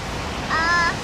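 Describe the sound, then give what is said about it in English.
A steady, noisy wash of water, waves surging and splashing at a beach, fills the moment, with a brief high tonal call rising over it partway through. “Wait, the water is so what? So noisy.”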